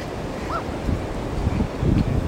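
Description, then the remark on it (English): Steady wind buffeting the microphone over the rolling wash of surf on a beach as someone walks back along it after a run, a broad outdoor roar that swells slightly toward the end with no voices. “And now I'm walking back along the beach and having a chat with you guys.”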